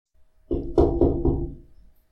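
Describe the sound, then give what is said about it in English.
Four quick, evenly spaced knocks on a window, fairly loud, each with a short hollow ring that fades out. No one speaks. “you're just gonna hear like a singular loud knock on the window.”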